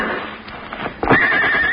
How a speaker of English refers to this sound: Oh, horses. You got horses hidden back in the woods.